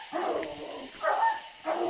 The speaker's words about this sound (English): The dogs take the track about a quarter mile down the creek and begin to bark treed. That means they think they've found the tree that the raccoon ran up.